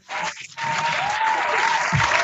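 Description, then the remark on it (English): A burst of applause sound effect, dense crowd clapping that starts abruptly, dips briefly, then swells and holds steady and fairly loud to the end, with no voices over it. “Where's the live studio audience? Where's the applause?”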